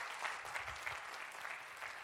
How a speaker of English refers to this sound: Come on, somebody. Give the Lord a great clap offering. Amen.